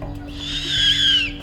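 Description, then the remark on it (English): A person imitates a screech owl's call in the daytime with a single high, quavering whinny that swells and holds for over a second, fairly loud, with no other sounds around it. “I'm going to make the sound of a screech owl.”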